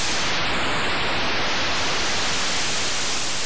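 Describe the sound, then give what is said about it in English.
A computer-generated ocean wave effect made by a short sound-generation program printed in a magazine article: a steady, loud wash of hissing white noise with a faint, slowly sweeping whistle-like filter tone running through it, no voices present. “And here's one for the ocean.”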